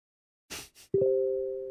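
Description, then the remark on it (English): Two brief bursts of hiss give way to a mobile phone notification tone: a clear, steady electronic beep that starts sharply and holds, slowly fading, with no talking. “Well, then, even my phone's getting excited. Boobity boop boop. I wonder who that is.”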